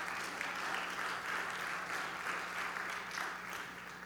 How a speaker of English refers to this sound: why don't we give him a round of applause really quick.